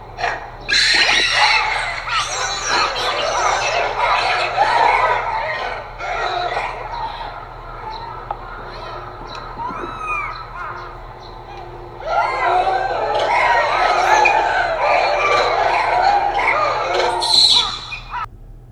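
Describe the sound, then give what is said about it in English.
A chorus of shrill, overlapping monkey calls from Japanese macaques: squeals, squawks and chirps rising and falling in loud bursts, easing briefly midway before swelling again, with a steady low hum underneath. “So check this sound out of Japanese macaques.”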